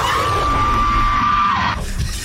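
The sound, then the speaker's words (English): Marlon Wayans lets out a long, sustained high-pitched scream that holds one steady pitch for over a second over a noisy background, then cuts off abruptly into a different, quieter noisy bit, part of a montage of his screams. “But if you think I'm lying, I made a nice Marlon Wayans scream montage for you so you can see exactly what I'm talking about.”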